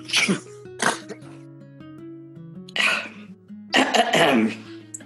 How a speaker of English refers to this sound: He sneezes into both hands, flattens his hair with them.